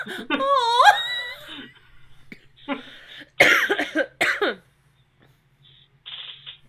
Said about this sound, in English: Oh, that was a good cough.